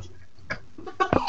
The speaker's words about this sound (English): That was the cutest sneeze ever. He has the strangest sneezes.